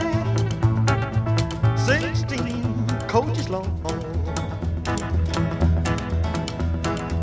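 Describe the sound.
A man sings an old rock-and-roll tune with a backing band, his voice sliding between notes over a steady thumping bass and beat that runs the whole way through.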